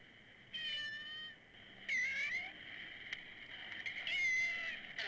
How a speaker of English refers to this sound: And one time we came across this cat, and it seemed to talk in half-human tones. He recorded that on his portable tape recorder.